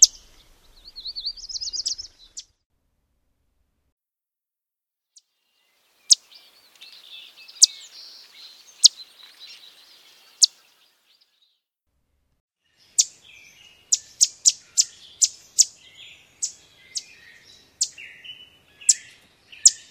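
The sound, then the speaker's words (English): A yellow warbler's sharp chit calls ring out, scattered singly at first, then in a quick irregular run, with a brief warbling song at the start and no talking. “The yellow warbler call is a sharp chit.”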